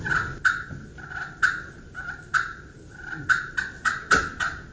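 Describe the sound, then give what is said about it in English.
Raspy, rolling turkey purrs played on a friction call with a light friction surface, a steady fluttering tone broken by sharp clucking pops, repeating unevenly over several seconds with no voices. “This is a friction light surface. It's a surround. And on cuts and purrs, where you purr, if you want a real kind of pop and a purr, it's real dead on it.”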